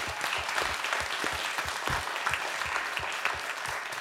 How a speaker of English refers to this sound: And I think, you know, the five speakers we had tonight, if we can give them one final round of applause.